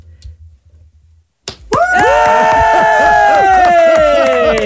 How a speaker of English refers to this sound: The clapping has to continue on through the whole thing. Okay. Otherwise, what's the point?